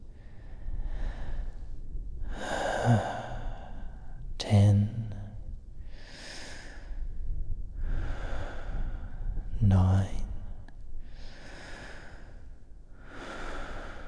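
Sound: slow deep breathing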